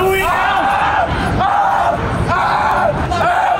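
A teenage boy screams in pain again and again as a police dog latched to his leg won't let go, after Granite City, Illinois police pulled him over; loud, strained, high-pitched cries in several long bursts with barely a pause between them, over a rough, noisy background.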